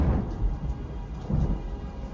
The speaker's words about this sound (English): The stage was all set in the deep of the night. A bolt of white lightning, a great peal of thunder.